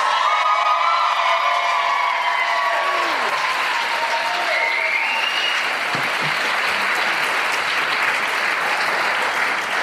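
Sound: audience applause and cheering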